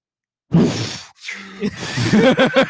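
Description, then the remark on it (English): A person imitates breathing suddenly restarting in sleep: after a brief silence comes a sharp, raspy gasp, then a few strained, groaning breaths, fairly loud with no other sounds. “That's when you stop breathing.”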